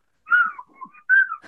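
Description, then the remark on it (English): A person whistles a quick, warbling series of pitch-sliding phrases in two main bursts, mimicking the chattering talk of two Clangers, the puppet creatures from the TV show The Clangers. The whistling is fairly loud with no speech. “where we actually translated what the Clangers were saying to each other.”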